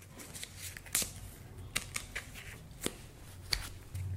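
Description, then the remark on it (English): A deck of cards being shuffled, with crisp papery riffles and sharp flicks at irregular intervals over a faint low hum, no voices. “For no reason at all, I'm going to shuffle these.”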